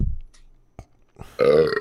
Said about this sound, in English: I'm getting the hiccups, so dude.